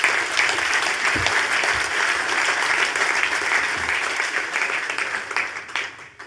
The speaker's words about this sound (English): Firstly, can we just all please clap it up